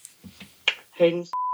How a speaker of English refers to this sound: We have to beep out your last name, but that's okay.